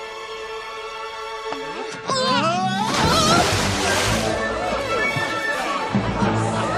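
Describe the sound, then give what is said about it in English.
A sudden loud splash as a woman knocks a man into the water, followed by several seconds of churning, sloshing water, with steady music playing underneath throughout. “She knocks him in the water.”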